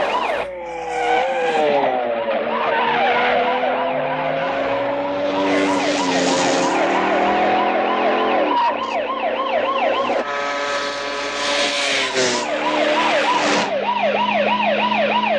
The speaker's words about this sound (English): So now we're just watching a car chase. They wanted to have it sound just like the people would hear as they're doing the chase. So the audience is hearing the car, the motorcycle sounds, no music. I think it's a really great effect.